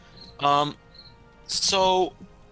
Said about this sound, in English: And that crickets drive me up the wall. I'm sorry. I'm trying to keep it on mute as much as I can.